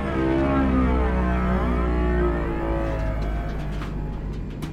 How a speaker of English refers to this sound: Please respond. Engines are failing.